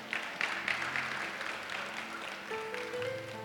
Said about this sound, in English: It's a Saturday afternoon. We are in church. Clap for your neighbor and clap for yourself.